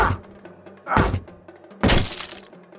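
Two heavy, splintering impacts as a back door is kicked in, the first a loud crunching thud and the second a sharper, brighter crash of breaking wood, each trailing off into rattling debris.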